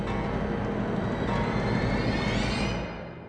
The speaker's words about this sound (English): He jammed the whistle into his lips. He blew.